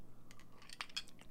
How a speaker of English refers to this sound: Or get glass straws. I've got glass straws. I'm using one right now to stir my, wonderful white Russian.